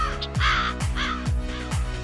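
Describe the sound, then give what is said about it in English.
A raven croaks four times in quick, steady succession, each call a deep, rough, throaty note, fairly loud with no voices present. “They often travel in pairs and communicate through low, croaking sounds.”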